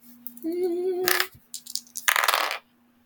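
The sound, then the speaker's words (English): Dice rattle and clatter across a hard surface in two short bursts about a second apart, preceded by a sustained tonal whine, with a low steady hum running underneath throughout. “I have a 70 purr and rolled an 86. All right, these dice are getting switched out.”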